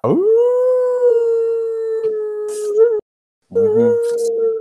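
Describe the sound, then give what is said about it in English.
A person howls like a wolf, one long sustained wavering howl rising at the start, then after a brief pause a second, rougher howl begins. Loud. “I'm a Lone Wolf.”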